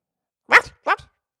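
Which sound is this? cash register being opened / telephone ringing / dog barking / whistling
dog barking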